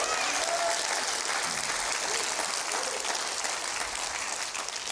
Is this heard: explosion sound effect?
no